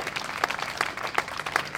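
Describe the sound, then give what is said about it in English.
A crowd applauds young black men standing behind the speaker, with dense, steady clapping, a continuous crackle of many hands at moderate loudness, with a few sharper claps standing out at regular intervals. No voices come through. “I salute them, we applaud them, yeah.”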